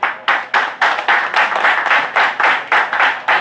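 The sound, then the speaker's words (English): An audience claps in a steady, even rhythm, about three sharp claps per second. The claps are loud and crisp, with no talking over them. “Claps in the room, you're not alone, and that's why you're here with me.”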